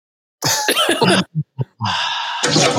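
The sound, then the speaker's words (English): A toilet flushes: a few clunks and gurgling bursts, then a steady loud rush of swirling water that carries on to the end, with no one speaking. “Your rap song is now flushed.”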